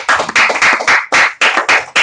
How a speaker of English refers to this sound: Give it up for them one more time. This clap.